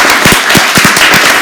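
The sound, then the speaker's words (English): A studio audience breaks into loud, steady applause, a dense crackle of many hands clapping at once with no voices over it. “Just by a show of applause, how many members of the studio audience have been told to clean your room by your parents?”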